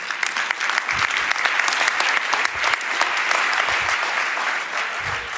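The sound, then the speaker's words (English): A crowd applauds steadily, dense clapping filling the whole stretch at an even, loud level, with a few faint voices mixed into the sustained ovation, a big hand clap for Pastor Rodney Howard Brown. “How about a big hand clap for Pastor Rodney Howard Brown?”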